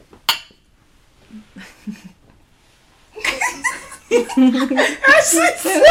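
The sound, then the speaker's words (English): A single sharp, bright clink of wine glasses in a toast near the start, then a quiet pause before people break into chuckles and loud, animated laughter. “I just cheersed our wine glasses”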